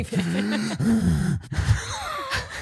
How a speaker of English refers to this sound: Like, I'm just heaving. I'm doing heavy breathing.